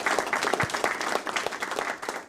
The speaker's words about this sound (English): We'll give you a round of applause too. Look at that.